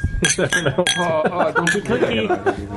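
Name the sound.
glasses clinking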